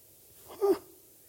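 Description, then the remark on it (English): A single small, high-pitched baby sneeze, short, standing out briefly against a quiet background. “I heard, who's that? That's my biggest fan right now, right? Praise the God bless you. The baby gets it.”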